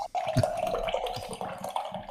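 A steady stream of liquid splashes continuously, like someone urinating, with a mid-pitched trickling tone and occasional brief splatters over about two seconds.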